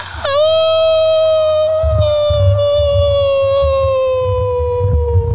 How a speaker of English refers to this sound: And suddenly the wolves howl. And the shot of the cloud covered moon. And now we're back inside, and there's a shot of the door with tense music, and the howling outside continues.